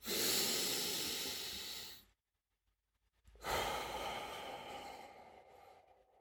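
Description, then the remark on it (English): A deep breath, drawn in as a long, loud, airy rush for about two seconds, a brief pause of silence, then a slow breathy exhale that gradually fades. No talking. “While we think of that, let's just take one good deep breath together.”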